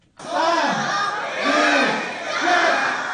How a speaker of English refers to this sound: Over 2,000 railway fans didn't hold back their excitement as they boarded the first train that departed from the new Exhibition Centre station.